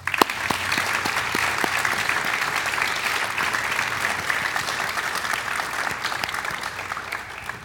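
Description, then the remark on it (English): Steady, dense applause from an audience at an Iowa City Human Rights Commission ceremony, for the youth performers and a youth ally, many hands clapping in a continuous wash that holds at an even loudness for several seconds before easing slightly at the end. “Before we close the ceremony, let's give another A big round of applause for all the great acts our youth are performing”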